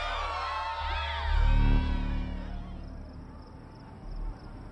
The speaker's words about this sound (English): Suddenly we were alone. The shouting of the crowd, now only an echo muted by the sound of wind and distant traffic.